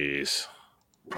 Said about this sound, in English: Bless you.